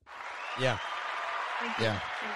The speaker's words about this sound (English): Thank you. That's applause.